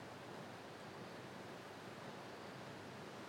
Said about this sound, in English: It's absolutely pouring down in Johannesburg. It has been all day. It was like, since last week's show, there must have been 200 mil of rain.